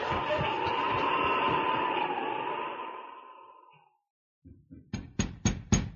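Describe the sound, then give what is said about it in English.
A sustained whooshing wash fades to silence, then visitors knock at Betty Topton's door on a snowy evening: a few soft taps followed by five or so sharp, evenly spaced raps that grow louder. No voices. “A few minutes later, Betty Topton answered a knock at the door.”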